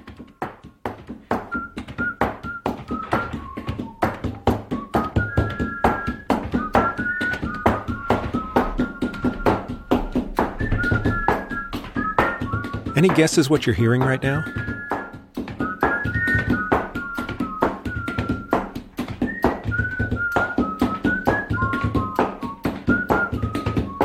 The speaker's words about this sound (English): That is the sound of postal workers in Ghana standing at a counter pulling a long straight pile of mail toward them and hand-canceling all the stamps. There's an intrinsic rhythm to the work. The stamp provides the rhythm,